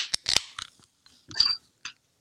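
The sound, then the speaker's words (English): Several drink cans, including a Budweiser beer, cracked open together on a count of three in quick succession, sharp metallic pops with a brief fizzing hiss, then one last snap. No one speaks. “One, two, three. Crack them.”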